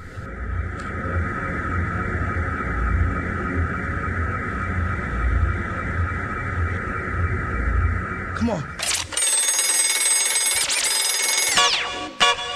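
A steady electronic phone-like ringing tone runs over a thumping hip-hop beat, then gives way near the end to a brighter, warbling ring with the bass dropping out.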